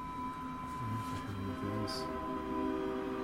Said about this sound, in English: Let the train speak. Yeah. What do you have to say there, Mr. Train?